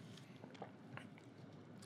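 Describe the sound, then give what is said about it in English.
Someone takes a quiet sip of water, with soft wet mouth and swallowing noises and a few faint clicks. No one speaks. “So I'm going to have a sip of water first.”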